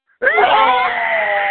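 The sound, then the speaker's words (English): A person imitates a screaming chihuahua: a shrill, high-pitched, single sustained wailing yelp that starts abruptly and holds loud for over a second. “So every time he tried to pull the chihuahua off, the chihuahua would be screaming.”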